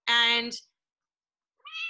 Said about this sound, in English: So sorry if you guys heard the meowing or whatever